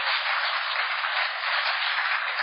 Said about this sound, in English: And if there's anybody in here that works corrections, thank you, because you made a difference in my life. And I want to give you a round of applause right now if you do.